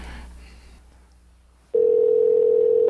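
After a moment of faint background hiss, a loud, steady telephone tone sounds for a little over a second and then cuts off, as a call rings through to a cell phone.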